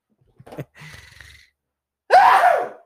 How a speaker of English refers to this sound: Oh, boy, I'm about to sneeze here.